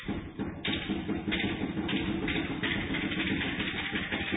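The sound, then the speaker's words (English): A steady, dense roar of crowd noise as Jess Bibby shoots a free throw at a women's basketball game, holding at an even loudness throughout with no single voice standing out and no one speaking clearly. “Bibby, well, the crowd give plenty of noise, but she's good enough to make the shot.”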